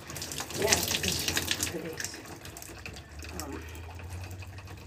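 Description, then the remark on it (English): Hot water runs steadily from a shower, a broad hissing spray with some splashing near the start, then settling into a softer continuous flow with a low rumble underneath. “The last step I like to do at the shower routine is turning the hot water to taste by itself.”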